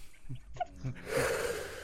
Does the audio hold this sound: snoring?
yes